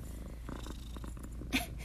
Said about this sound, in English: A small break for Coraline. We're having a temporary pause for purrs. That's all right. Coraline, do you want to talk about it?